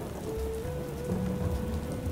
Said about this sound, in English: Is it still raining out there? It feels like it's been raining forever.